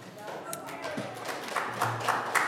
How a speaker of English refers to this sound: Either you guys are applauding because we have a church or you got it right. So one of the two.